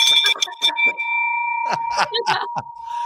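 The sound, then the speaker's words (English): A bell rings out celebrating a property sale, with a steady, sustained tone that carries through the whole moment, while excited voices cheer and shout over it. “Where's the bell? Where's the bell? Yes!”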